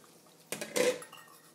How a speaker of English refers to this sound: So what the heck, let's throw some of these water chestnuts in there.